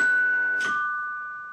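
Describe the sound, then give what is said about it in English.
A doorbell chime at a front door rings with two clear bell tones, the second slightly lower and starting just after a brief clack, both ringing on and slowly fading with nobody speaking. “You flinch as two knocks thunder on the front door, and the doorbell chime swallows up the air in the room.”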